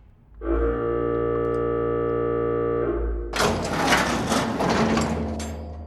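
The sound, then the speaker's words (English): A loud, steady buzzing alarm with a rich, harmonic tone blares through a cavern for about three seconds after a worker touches the metal surface of a huge round structure nearly 30 feet tall, then gives way to a harsh, churning mechanical roar. No one speaks. “There was a loud alarm that resonated throughout the cavern, forcing them all to cover their ears.”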